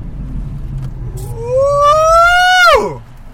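A car engine revs up, its pitch climbing steadily for over a second before cutting off sharply, over a low road rumble with no one speaking.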